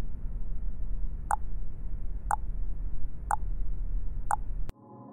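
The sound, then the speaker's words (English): A countdown timer created by the Slumberland Computer Club ticks four times at an even one-second pace, each tick a short, bright blip with a slight tonal ring, over a steady low hum that cuts off abruptly at the end. “This countdown timer was created by the Slumberland Computer Club.”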